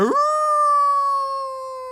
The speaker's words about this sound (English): The dog flew through the open door and gobbled up the cat, and then sat back on his haunches and gave a great howl because he had made such an excellent meal of the cat.